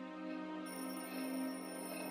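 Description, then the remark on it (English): A magic orb rings like a phone: a steady, buzzy electronic tone with layered harmonics, sustained throughout and swelling slightly midway, with no voices. “Oh, your orb is ringing.”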